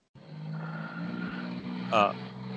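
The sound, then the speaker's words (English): A truck drives past outside with a steady, rumbling engine drone that holds at moderate loudness throughout. Near the end, a brief voice sounds over it. “There goes another truck.”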